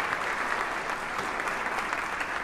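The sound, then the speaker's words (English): Steady applause from a crowd at a Department of Justice gathering held to surprise Attorney General William Barr, a dense, continuous wash of clapping at an even level throughout, with no voices standing out. “You'll hear some background noise and then some music, and then I'll tell you what's going on here after this applause.”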